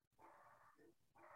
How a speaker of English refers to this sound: You've riled up my dog. He's downstairs barking. He doesn't like baby voices either.